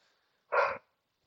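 A single short, muffled bark from a pet dog, a brief rough burst with quiet before and after and no talking.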